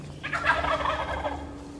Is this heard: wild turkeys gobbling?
yes